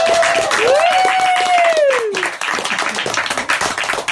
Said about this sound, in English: So, guys, a big thunderous round of applause for yourselves. Thank you for joining us.